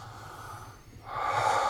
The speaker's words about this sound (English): Next one is to take 3 strong breaths.